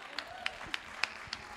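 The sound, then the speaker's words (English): A church audience claps in a slow, steady rhythm for a woman about to help take up the offering, about six crisp, fairly soft claps spaced evenly apart over a low background hum, with no voices standing out. “Come on, let's give her a clap.”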